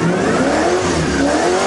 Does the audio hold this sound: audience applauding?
no